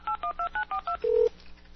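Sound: telephone keypad dialing tones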